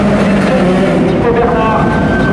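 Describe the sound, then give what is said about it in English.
Loud GT race car engines, Aston Martins leading, roar past one after another as they head off for the warm-up lap, in a continuous, rasping blare, their pitch shifting as they go by, with faint voices mixed underneath. “Right, one by one the cars go. Right in front of us now, here go the Astons.”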